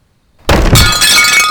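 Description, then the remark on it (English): A sculpture thrown at a man's head smashes with a loud crash, followed by a bright spray of breaking glass and ceramic shards that rings and scatters for about a second. No one speaks. “She takes a sculpture from the wall beside her and throws it at his head.”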